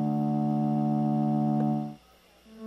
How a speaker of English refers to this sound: In this case, honestly, the character of this sustain pedal, you kind of just need to pile stuff on it to like try to warp it, because the way it sounds without anything on it is like a sine wave.